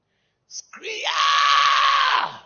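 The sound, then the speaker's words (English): A male preacher, during a sermon, lets out a loud, drawn-out imitation of a scream, opening with a short sharp burst and then rising into a sustained, strained shriek lasting nearly two seconds. “Scream! Bam!”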